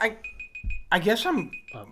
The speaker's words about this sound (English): What is that all about? It was the timer. It was the old timer.